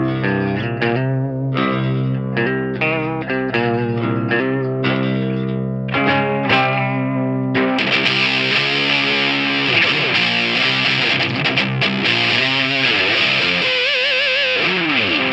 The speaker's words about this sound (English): Yeah, it's just, it's super hot. And honestly, the distortion's only turned up to about maybe 7 out of 10. So if you take it all the way, it gets pretty nasty. But it's very articulate.